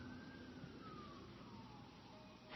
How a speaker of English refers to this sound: Boy, the sirens are going wild here. Fire truck, wow.